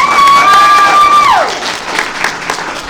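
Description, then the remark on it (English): An audience claps to vote for Nick Fury and Maria Hill, a dense, steady burst while a high, sustained whoop rings over it for about a second before sliding downward; the applause carries on a little softer afterward. “Let us vote then. Nick Fury and Maria Hill, applaud now.”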